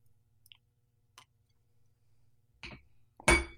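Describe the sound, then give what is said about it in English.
A glass of whiskey clinks during a sip: a few faint light ticks, then a dull knock and a loud, bright clink with a brief ringing tone at the end, over a low steady hum. “Let me take a little sip here.”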